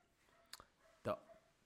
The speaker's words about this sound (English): Oh yeah, welcome our guest, the doggy. Doggy fucking barking, piece of shit.